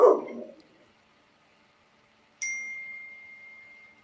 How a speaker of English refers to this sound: My dog is barking.